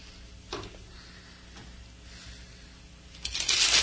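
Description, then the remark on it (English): A deck of tarot cards being shuffled: a few soft riffling flicks early on, then a louder, dense burst of papery shuffling at the end. No one speaks. “Sorry, I had to shuffle.”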